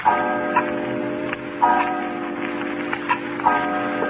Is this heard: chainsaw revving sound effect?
no